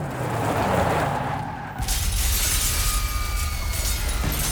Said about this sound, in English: People hurried with baggage and tickets in hand, but everything came to a chaotic halt when the airport's glass doorway shattered.